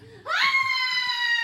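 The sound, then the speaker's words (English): A single high-pitched scream swoops upward and then holds steady, sustained and piercing, through to the end, made away from the microphone, with a faint murmur beneath it. “I don't want to scream on this mic. I'll scream over here.”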